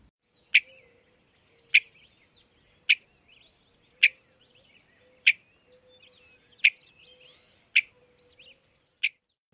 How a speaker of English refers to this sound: Western meadowlark, which is more rounded and bell-like.